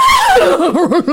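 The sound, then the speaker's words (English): A person's voice imitates a horse whinny in a judged neighing challenge: a high descending cry that drops into a rapid, wavering series of pulsing, laugh-like bleats, loud and alone for just over a second. “Don't need to have a lot of research to know that a horse goes nay.”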